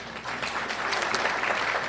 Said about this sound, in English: Is anyone here in their first 2 years of teaching? Hey, nice to have you. Round of applause for our new colleague.